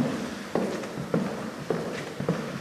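Footsteps walking deeper into the main building of a supportive living facility for veterans at a steady, even pace: four firm, moderately loud steps evenly spaced, with no one talking.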